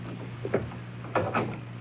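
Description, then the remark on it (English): An office door in a prison swings shut over a low background hum: a soft bump, then a sharper, louder clunk and latch rattle a moment later, with no talking. “Close the door.”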